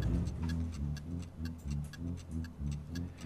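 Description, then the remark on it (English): A steady clock tick-tock clicks in an even rhythm over low, moody music with a pulsing bass line, the ticks crisp and prominent throughout; the music was composed for a scene with a clock and a timer on a character solving a puzzle. “And the clock's going.”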